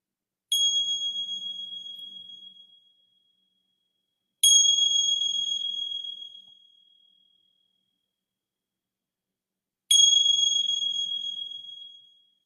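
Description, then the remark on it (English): A meditation bell is struck three times at slow, even intervals, each clear, bright tone ringing out and fading gradually into silence. No one speaks. “And just allowing yourself to be here in this moment and receiving the sounds of the bell.”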